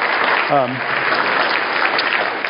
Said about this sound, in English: So, I don't know. I think he's not here to hear it, but I think it would be a good thing to clap, just because that's a lot of work.